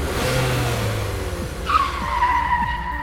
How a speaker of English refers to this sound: I sincerely hope this lever is the emergency brake and not yet another comically inappropriate gadget I activate by mistake! Proximity alarm. Auto-activating emergency brake.